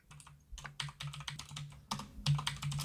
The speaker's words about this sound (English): I'm typing, sorry.